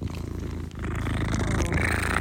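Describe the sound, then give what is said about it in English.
A cat purrs steadily, a low rumbling vibration with a rhythmic pulse that swells slightly louder partway through. No one speaks. “I try to get you guys some, purrs.”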